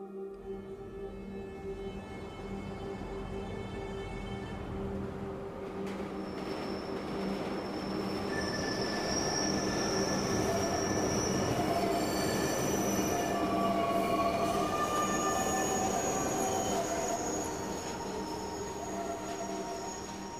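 A train rumbles steadily along the rails for about twenty seconds, its wheels letting out sustained high-pitched metallic squeals and whines over a constant low roar, with no voices.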